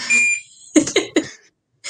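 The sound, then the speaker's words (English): Electronic alarm tones sound: a steady high beep, then three quick bursts of ringing tones in a row, and another tone starting at the end. No one is talking. “I got every alarm going off here.”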